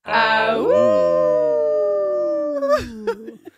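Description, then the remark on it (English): A person imitates a wolf with one long, loud howl that rises briefly, then slides slowly downward in pitch before trailing off into a few short breathy sounds. “Now's the time to howl out.”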